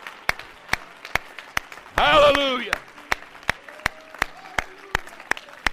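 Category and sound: crowd, audience clapping hands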